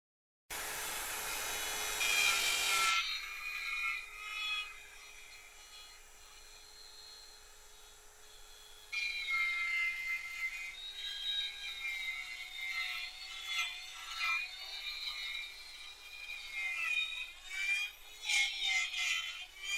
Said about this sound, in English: When you're sanding, use tiny circles.